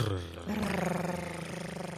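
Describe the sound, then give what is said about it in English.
Someone vocally imitates a drum roll with a rapid, rattling trill before the announcement of an honorary first draft pick. The low, buzzy sound is sustained for about two seconds and comes across somewhat like a growl or purr. “Can I get a drum roll, please?”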